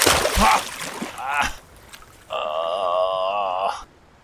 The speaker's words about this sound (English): you wake up the next morning to water splash on your face.